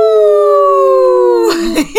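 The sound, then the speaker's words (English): People imitate a wolf as a tribute to Izzy, the she-wolf. A long, loud, steady howl slowly drifts lower in pitch for about a second and a half, then breaks into shorter wavering vocal whoops. “Izzy, let's give a good howl for her, the she-wolf.”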